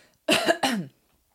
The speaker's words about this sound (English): I got a cough first.